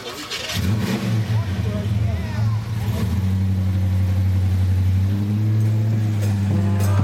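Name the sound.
pickup truck engine revving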